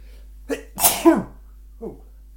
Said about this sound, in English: And I'm about to sneeze.